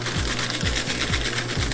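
A steady, loud mechanical whir and grind of a paper shredder shredding cash, with a low motor hum that pulses in a regular rhythm about every half second; no voices.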